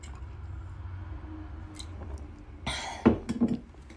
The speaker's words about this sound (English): We wouldn't want that, and I'm drinking water like a motherfucker. Hold on.